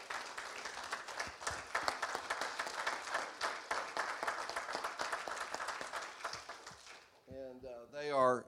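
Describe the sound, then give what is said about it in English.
A church audience bursts into sustained applause in appreciation of a couple, dense overlapping hand claps at a steady roar for about seven seconds, then fading as a man's voice begins speaking. “And why don't we just give them one more hand clap of appreciation.”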